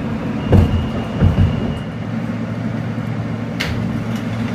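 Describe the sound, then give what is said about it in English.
A Brooklyn-bound F local subway train, running via the C line, rumbles steadily between Fulton Street and High Street stations, a continuous low roar with a few louder clanks and rattles from the rails, heard from inside the car with no talking. “This is a Brooklyn-bound F local train via the C line.”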